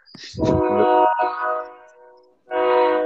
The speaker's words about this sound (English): Yeah, you guys can hear a fucking train passing by.